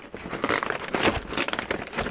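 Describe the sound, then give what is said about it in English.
Loud crinkling and crackling of stiff brown paper being torn away as a gift package is opened and handled, a dense run of sharp rustles lasting a couple of seconds with no voices. “We see some brown paper.”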